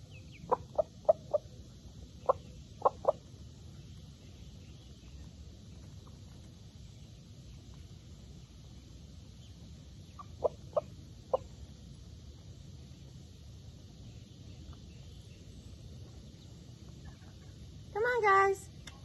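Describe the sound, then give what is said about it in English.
Backyard birds being fed little breadcrumbs cluck in short, quick bursts, two small clusters of sharp clucks over a steady low outdoor rumble, ending with a louder drawn-out call. “I have to say, just hanging out with the birds, feeding them little breadcrumbs is the most relaxing thing.”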